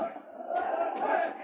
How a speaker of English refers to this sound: Sergeant Preston could hear the yells of the crowd as soon as he reached town, and so he drove straight to the cafe and stopped his team out in front.